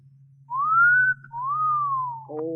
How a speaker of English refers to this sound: Well, then you should have made the whistle shorter, like this.